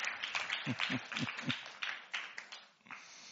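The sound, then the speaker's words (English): An audience applauds a man who has read a marathon Bible reading, a dense steady patter of many hands with a few sharper individual claps standing out, carrying on throughout before easing slightly toward the end. “Round of applause for the man who's read a marathon Bible reading.”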